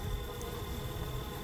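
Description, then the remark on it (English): A steady, dense hum of many honeybees buzzing together and fanning at a hive as a queen cage is stood between two frames; continuous and unbroken, fairly soft with no voices. “See, look how many bees we have right there. Okay. There are a lot of bees.”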